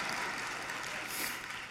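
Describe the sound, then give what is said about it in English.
Women in a church audience clap steadily during a sermon, a dense patter of many hands blending into a continuous wash of applause at moderate loudness, with no voices on top. “Now you can clap, women, okay?”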